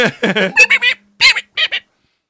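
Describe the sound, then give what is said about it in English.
A voice imitates moth squeaks with a quick run of about eight high, squawky chirps, loud and bird-like, ending in two short squeaks after a brief pause. “Just moth squeak sounds.”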